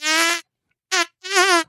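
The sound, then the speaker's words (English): A voice imitates farts, trying to do the Batman theme, with three buzzy, raspberry-like blasts: a long steady one, a short one after a pause, then a longer one that wobbles in pitch as it traces the tune. “Trying to do the score with farts.”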